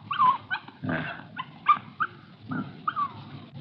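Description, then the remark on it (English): A female puppy yips and whimpers in short, high-pitched bursts, about six or seven in quick irregular succession, over a low rumbling background. “It's a little girl. Just a puppy.”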